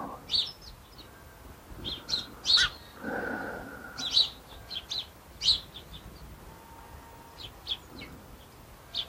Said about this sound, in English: In the hedgerow next to it, which I think must be the hedge sparrows. They're also called dunnocks.